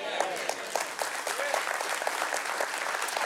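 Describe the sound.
An audience claps steadily in a dense, crackling burst of applause that holds even throughout, with scattered voices and faint cheers mixed beneath the clapping.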